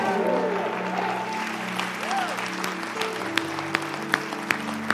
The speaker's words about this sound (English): Come on, give her a round of applause this morning.